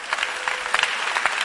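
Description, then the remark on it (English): An audience claps together in a steady, dense burst of applause, many hands slapping at once at moderate volume, with no voices standing out, clapping for a person's salvation after a testimony. “Oh, clap for pure salvation.”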